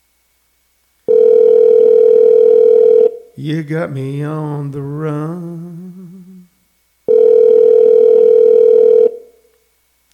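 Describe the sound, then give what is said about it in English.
A phone line rings out on a call with two loud, steady electronic ringback tones, each about two seconds long, separated by a pause in which a voice speaks. “There's the phone is ringing. The telephone is ringing.”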